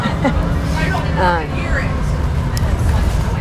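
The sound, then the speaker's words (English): Inside a bouncing bus while riding, deep, rattling engine and road noise rumbles steadily, and muffled voices briefly rise above the constant low drone. “So I don't know, but like this bus is really bouncing.”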